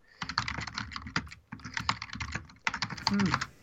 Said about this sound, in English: Excuse the typing.